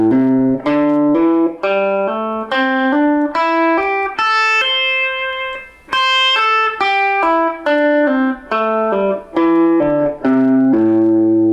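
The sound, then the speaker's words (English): A distorted electric guitar plays a smooth, connected scale with hammer-ons and pull-offs, climbing steadily in pitch note by note, then descending back down at an even pace, with no talking. “So I want you to be able to hammer all the way through the scale and pull off all the way back.”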